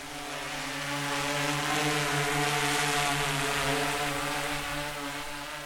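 A drone hovers in place outside broken windows, its propellers giving off a steady, droning buzz with a tonal hum underneath. The sound stays continuous at an even loudness throughout, with no voices.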